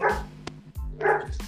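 A dog barks twice, two loud woofs about a second apart, with a faint low rumble of background noise and no talking.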